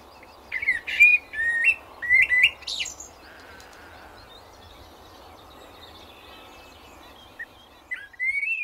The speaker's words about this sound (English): All the birds in London just have the craziest combination of mobile phone sounds, all the new and just like the, I don't know, the clicking and the sort of 50 years ago they would just not have had any of those sounds around them.